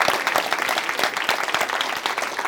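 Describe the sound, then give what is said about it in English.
Audience applause: a steady, dense patter of many hands clapping at once, sustained at an even loudness for the whole stretch with no voices over it. “Okay, so in conclusion, give them a round of applause for what they're doing for R&B.”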